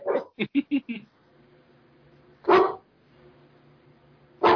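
A female dog barks in a quick run of four or five sharp yaps, then lets out two louder single barks a couple of seconds apart over a faint steady hum.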